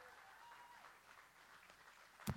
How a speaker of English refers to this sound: Please give a warm round of applause to my friend